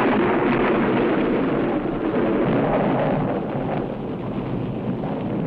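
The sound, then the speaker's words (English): A loud crash of thunder with lightning rolls on as a dense, sustained rumble for several seconds, heard alone without any voices. “Did you see that? Lightning? Of course I did.”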